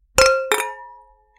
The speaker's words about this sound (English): grab your glass. It's cheers in time. All right. Cheers. Cheers.